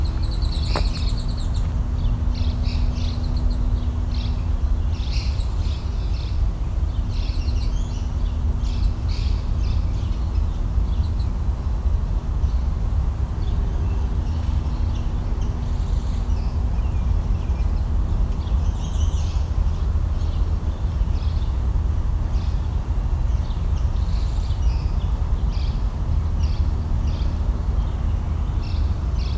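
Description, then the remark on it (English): Starlings call in a busy, overlapping chatter of short high chirps and squeaky whistles, repeating irregularly throughout over a steady low rumble of background noise. No one speaks. “So here's starlings.”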